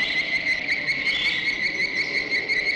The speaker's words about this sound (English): and then, you know, Pat, she's just, you know, looking around in the desert, all of a sudden you hear the noise, it's like cicadas, kind of.